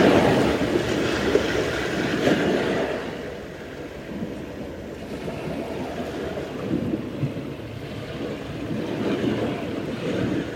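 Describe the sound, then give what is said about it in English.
Steady ocean surf washes in broad, rumbling swells, a continuous roar of waves with a louder surge at the start that eases into a softer, rolling wash. No voices. “Feel the sound current of the ocean bathe every single cell in your body, refreshing, energizing, soothing old wounds.”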